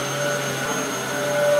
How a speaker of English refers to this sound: A vacuum cleaner is at your disposal to tidy your area.